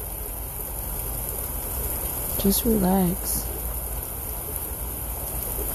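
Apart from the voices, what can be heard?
rain falling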